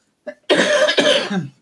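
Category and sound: human body sound, cough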